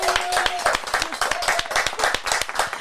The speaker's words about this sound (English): Ladies and gentlemen, live at Paco's Place, how about a big round of applause,